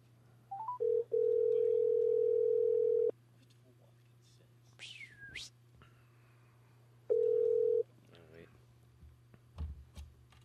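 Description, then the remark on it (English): A few quick dialing beeps, then an outgoing call's ringing tone: a steady two-second burst, a long pause, and the tone starting again, over a constant low hum. “Poor Stephanie's getting called again.”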